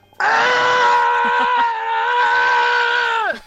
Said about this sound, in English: But we are inviting you to send us in your screams